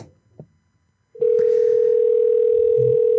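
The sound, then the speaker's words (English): After a brief quiet moment with faint low rumbles, a loud, steady electronic telephone ringing tone starts abruptly and holds unbroken for about two seconds, as on an outgoing call to a laundromat. “I'm just trying to get a laundromat to pick up the phone.”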